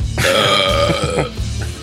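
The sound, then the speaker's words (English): A loud, drawn-out burp, rumbling low and lasting nearly two seconds with a gravelly, wavering tone. “Well, it's the burps.”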